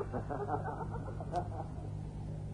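Birds sing high and remote in bright sun, in Zweibergen, Europe, in 1926, calling in a busy, overlapping cluster for the first second and a half, then thinning out, over a steady low hum in the background.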